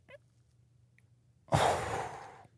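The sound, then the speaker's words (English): A single heavy, strained breath, a loud breathy exhale lasting about a second after a near-silent pause, rasping with no talking. “Yeah, breathing seems super hard.”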